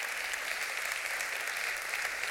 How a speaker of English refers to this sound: Put the applause sign up, and they're all supposed to clap at a certain point. Well, I'll tell you the next time you're supposed to clap.